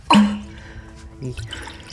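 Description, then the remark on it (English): A drink is poured into mugs: a sudden bright splash with a ringing, hollow tone that fades, then a softer second gush of liquid about a second later. “Can you find some mugs?”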